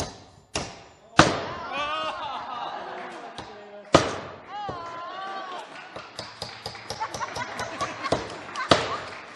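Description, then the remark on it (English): A hammer strikes a nail in a handful of sharp, loud knocks at uneven intervals, with people talking and exclaiming between and over the blows. “Do we have any more nails? I feel like I can do better than that first one.”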